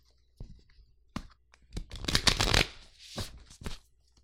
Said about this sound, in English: I would shuffle the deck. Yep. That one. I would do it better than that. I was pretty impressed.